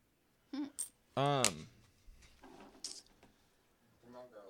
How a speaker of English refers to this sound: And that's why I put your coins in there that I brought you back, because I just think. I brought you a change purse with some change.